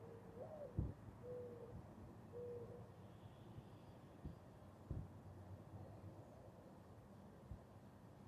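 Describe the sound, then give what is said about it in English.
A very common bird, not an owl, gives a soft, owl-like hooting call, three low cooing notes in slow succession, recorded while walking outside, with a few faint knocks and quiet outdoor background afterward. “I hear a bird that I want you to hear.”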